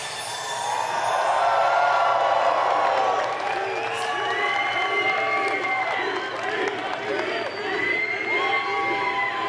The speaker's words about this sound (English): Thank you very much. I can't even imagine the size of the bar tab that it paid for that applause, but I thank you for that.